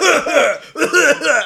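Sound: imitated cough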